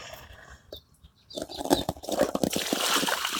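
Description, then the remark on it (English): Quiet at first, then water from a plant watering system sloshes and gurgles, a run of irregular splashy bursts that grows louder and stays busy to the end as a plant gets too much water. “Now I'm noticing that this plant's getting way too much water too. You're kind of swimming in water, aren't you, honey?”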